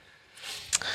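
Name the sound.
sneeze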